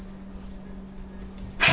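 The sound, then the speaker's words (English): A dog makes a single short, breathy snort near the end, breaking a quiet stretch of room hum. “Oh, puppy.”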